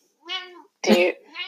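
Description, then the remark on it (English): A cat meows twice, drawn-out tonal cries, with a short harsh, noisy burst between them. “Dogs barking, cats meowing, but the sun is shining and it's not raining, so that's awesome.”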